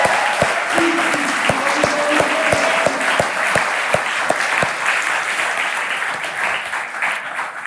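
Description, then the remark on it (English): A crowd breaks into a full round of applause, dense steady clapping that holds loud throughout, with a few sharp individual claps standing out and some faint vocal cheers in the first seconds. “So can we just give a big round of applause as though they were in the room?”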